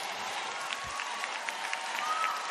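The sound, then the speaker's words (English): Steady applause from an audience, a dense wash of many hands clapping at a fairly even level, with a few sharper claps and a brief whistle-like tone near the end. “Why are they applauding?”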